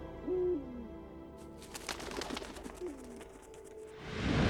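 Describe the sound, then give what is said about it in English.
An owl hoots twice, low and mellow, the calls a couple of seconds apart over a rustling, breathy background that swells into a louder whoosh at the end. “She's an owl.”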